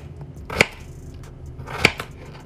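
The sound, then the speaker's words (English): A knife chops potatoes into cubes twice, each stroke a crisp, sharp thud on the cutting board about a second apart, with low quiet background in between and no talking. “Now we're just gonna cut this up into cubes.”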